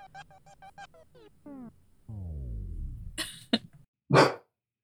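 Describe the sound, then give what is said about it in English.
A female dog barks several times, starting with a run of short yips and a drawn-out whine, then a few sharp, loud barks with pauses between them. “with the bark.”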